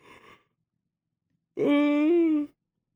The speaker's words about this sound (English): Yawn number three.